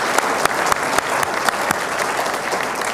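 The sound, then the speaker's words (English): A crowd at an evening event at the Manil Collection in the United States claps steadily in sustained applause, a dense wash of overlapping hand claps with a few sharper individual claps standing out, fairly loud throughout and with no voices. “Could we give them all a really nice round of applause?”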